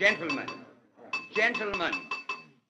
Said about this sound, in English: After cigars had been passed and lighted, and as the men of the Fourth Estate sat chatting over their demitasse, their host, Mr. Ray Long, arose and tapped on his glass.